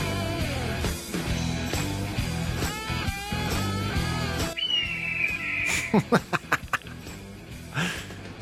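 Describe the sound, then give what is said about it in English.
A red-tailed hawk's single raspy, descending scream rings out over a steady backing of music, followed by a quick run of sharp percussive hits. “Roger! With a majestic red-tailed hawk.”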